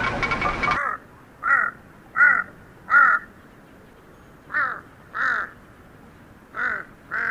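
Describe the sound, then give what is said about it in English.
A huge Tibetan crow hopping across a high field calls repeatedly, about eight harsh, croaking caws in loose pairs and singles, loud against a quiet outdoor background. “I remember being startled by the bizarre sounds made by a huge Tibetan crow hopping across a high field.”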